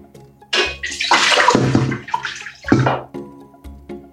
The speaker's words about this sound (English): We're going to pour the salt water that you just made into the large pot.